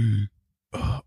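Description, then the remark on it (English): A voice imitates gasping for air: two loud, breathy vocal bursts with a short silent pause between them, and no words spoken. “Like I was straight like, gasping.”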